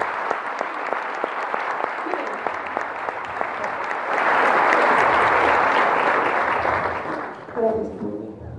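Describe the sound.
An audience claps steadily, the dense applause swelling louder halfway through and holding before tapering off, with a man's voice breaking in briefly at the end.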